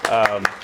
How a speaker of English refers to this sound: I'll clap